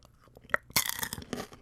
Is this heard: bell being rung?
no